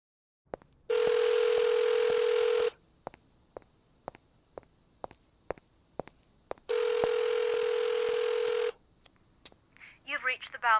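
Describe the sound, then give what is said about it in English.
A phone call to a mother's phone rings out unanswered: two long, steady buzzing ring tones separated by a pause filled with sharp clicks, then a voicemail greeting begins speaking at the very end. “Answer your goddamn phone.”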